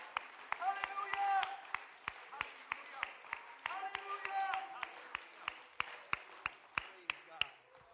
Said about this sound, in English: If you want to receive something from God today, would you indicate that by clapping and shouting unto God with a voice of triumph?